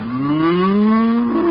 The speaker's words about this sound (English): Back the cow into the closet. Hurry. Come on, bossy. Back. Back.